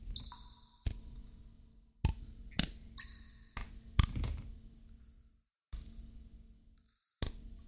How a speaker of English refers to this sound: Let me slap this wall again.